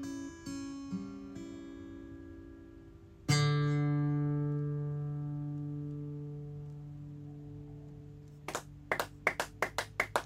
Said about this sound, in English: All of a sudden, I started to hear claps. Unbeknownst to me, a small crowd of people were all sitting and listening to me sing.